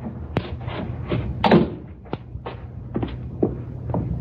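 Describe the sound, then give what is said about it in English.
Several dull wooden thuds and knocks of a cellar door at the back of a house, in an uneven rhythm, with one heavier bump near the middle, over a low rumbling background and shuffling movement. “That's the cellar door.”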